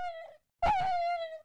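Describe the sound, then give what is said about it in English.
A dog whines twice in a high, steady, nasal tone: a short whine, a brief pause, then a longer drawn-out one that rises slightly before fading. No one speaks. “And had a scoundrel dog whom he taught to whine in the most ludicrous manner and introduced as a rival of Ichabod's to instruct her in psalmody.”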